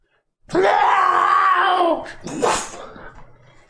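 A person lets out a loud, strained, gurgling scream that holds for about a second and a half, then breaks into a short raspy, choking burst before trailing off.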